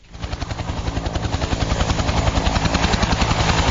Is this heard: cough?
no